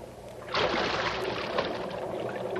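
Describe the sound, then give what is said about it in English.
A person drops about 12 feet into sewer water with a sudden, loud splash, followed by a couple of seconds of continuous churning and sloshing. Nobody speaks. “Come on in. The water's fine. It's about a 12-foot fall.”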